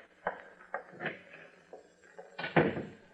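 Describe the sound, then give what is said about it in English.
A few soft knocks and shuffles, then a firmer thud and rattle near the end as a powder room door is opened and shut, with no one talking. “There's a phone in the powder room, that door over there.”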